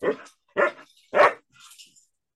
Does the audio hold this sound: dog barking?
yes